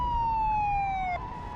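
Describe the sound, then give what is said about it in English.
A police car's siren blares loud as it comes up behind a car in the rain, holding one high tone that slides slightly lower before cutting off abruptly, leaving a low road rumble underneath. “And suddenly, in the rearview mirror, I discovered a police car coming up behind me with a loud siren and lights flashing madly.”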